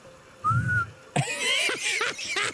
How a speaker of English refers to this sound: I'll whistle for the gang.